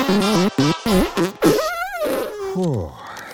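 A rapid run of short, buzzy fart noises, then a longer wavering blast and a final drooping squeal, loud with no talking.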